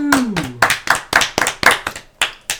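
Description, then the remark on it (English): About ten sharp, loud hand claps in a fairly steady rhythm, a single person clapping with no talking; a brief falling low tone sounds beneath the first few claps. “A round of applause for the first season.”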